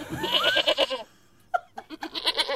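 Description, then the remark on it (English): A goat bleats in a loud, wavering call lasting about a second, then after a short pause a few more quavering, nasal bleats follow. “And it turns out that the third party in the marriage is a goat.”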